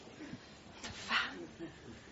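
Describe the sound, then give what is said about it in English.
A dog named Pele gives a short, high-pitched whimpering yelp partway through, fairly quiet, with a low murmur of background noise and faint sounds around it. “And even though she is a wonder dog, even Pele had to be taught There is a better way of showing and getting affection than jumping on me.”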